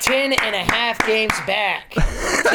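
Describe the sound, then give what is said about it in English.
Six or so sharp claps at a steady rhythm under a sustained, wavering vocal cheer, like a single voice imitating crowd applause for the Atlanta Braves clinching the NL East, ending in a breathy, noisy exhale. “Round of applause for the Braves.”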